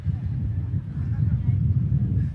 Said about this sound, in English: Quite windy here. It's tied down well, though.